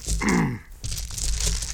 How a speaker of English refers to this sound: You roll your dice, and I got a 12. Now let's say I'm a third level fighter. So I'm going to add +3 to that roll because I'm a third level fighter. So now I've got a 15.